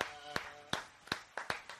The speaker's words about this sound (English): You hear that? That's two claps.